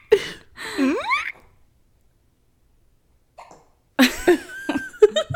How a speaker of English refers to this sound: has the hiccups